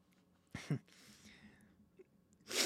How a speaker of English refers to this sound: I'm going to have to sneeze.